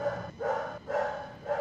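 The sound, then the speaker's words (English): A dog barks three times in quick succession, fairly loud, with each bark ringing out in a steady rhythm and no voices present. “Sorry, my dog here was barking at it.”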